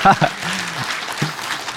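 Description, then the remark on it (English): An audience claps in a steady, dense patter that fills the whole stretch, with a few brief voices and a short hum rising over the applause. “You can clap.”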